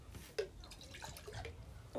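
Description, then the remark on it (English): A short, quiet splash of a pink drink poured into a cup, a soft trickling with a few drips, with faint background murmur. “Pour me just a little.”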